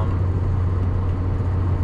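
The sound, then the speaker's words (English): A steady low rumble of road noise inside a moving car, constant and fairly loud, with a broad hiss above it and no voices. “I don't know how far of a drive it is.”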